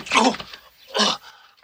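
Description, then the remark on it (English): Two loud, rasping snores from Tripitaka's mother at night, a long rumbling one followed by a shorter one after a brief pause, with no talking. “Of course, it's not going to last forever because Tripitaka is awakened that night by his mother snoring.”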